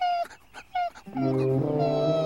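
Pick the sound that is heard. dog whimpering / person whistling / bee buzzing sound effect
dog whimpering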